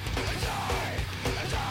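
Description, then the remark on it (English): A drawn-out, voiced yawn lasting under two seconds, with a wavering, moaning tone that rises and falls at a steady moderate loudness, and no words spoken. “I'm yawning, I'm sorry.”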